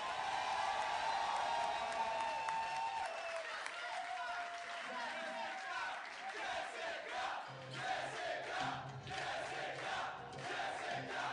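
A crowd cheers and applauds loudly, with whoops and shouts over a steady wash of clapping that continues for several seconds before gradually thinning out.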